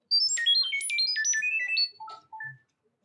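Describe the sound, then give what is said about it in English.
A Chirp app data-transfer tone sending a link: a rapid run of short, pure electronic beeps hopping between high pitches for nearly two seconds, then a few lower, softer tones at the end. “And I'm gonna chirp you right now.”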